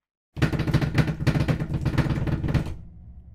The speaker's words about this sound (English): Wait for it. Drum roll.